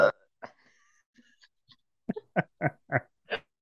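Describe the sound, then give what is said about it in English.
Throaty burps after chugging a seltzer: a few scattered short ones, then about five gurgly bursts in a quick, steady run near the end, with no talking. “About to burp.”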